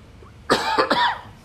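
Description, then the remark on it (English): A quick burst of loud coughing: three harsh coughs in rapid succession, each a broad rasping blast that trails off, with quiet before and after. “And then when you wake up, pardon me while I cough.”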